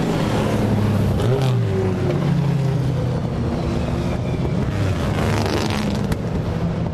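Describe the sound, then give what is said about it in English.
Several powerful car engines, including a course car (an Audi R8), Jaguars and a Dino, rumble steadily and loudly, their pitch rising and falling as they rev and pass in a continuous procession, with no talking. “It's the course car, an Audi R8, and some Jags, a Dino.”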